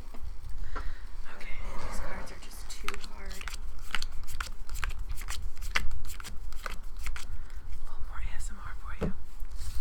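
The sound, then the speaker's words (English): Stiff, brand-new playing cards are shuffled, with a steady run of crisp, papery riffles and snaps repeating over several seconds, plus a soft whispery rustle underneath. “They probably couldn't shuffle it. They probably gave it back, yeah, because they couldn't shuffle it.”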